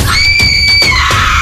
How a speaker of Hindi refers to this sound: कटी जो नाक तो वो मिमना की चिल्लाई, यूं ही मचाती हुई शोर एक तरफ भागी।